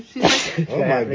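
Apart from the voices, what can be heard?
allergy sneeze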